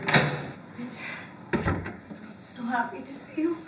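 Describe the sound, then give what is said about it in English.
A back door opens, with a sharp clunk of the latch at the start and a second knock as it swings, over a faint murmur of indistinct voices. “And listen, my bodyguard will be there, so enter from the back door.”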